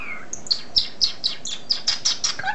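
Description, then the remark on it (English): A European starling sings a quick run of about ten bright, high chirps in a steady rhythm, clear, with no voices present. “The story goes that Mozart frequented a pet store in Vienna and became enamored with a particular European starling.”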